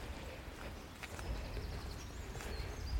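Water gushes in a steady, unbroken rush as a streamlet pours out of a mossy, boulder-clad hillside through alders, oaks and beech trees, with a full low rumble and a hiss across the top, while a few faint bird chirps come through above it.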